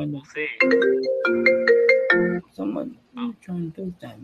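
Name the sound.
phone ringtone ringing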